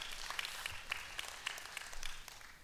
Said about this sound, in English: Does that make sense to anybody? If so, just give the Lord a hand clap or something just to give me hope.